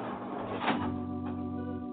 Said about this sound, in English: The bolts outside the dungeon door are pulled back. The big heavy door swings slowly open.